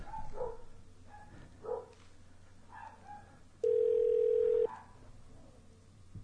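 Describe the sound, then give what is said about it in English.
A single steady telephone ringback tone during a prank call sounds loudly for about a second, with a few short dog barks and yips in the background before it and a low background hum throughout. “It's ringing.”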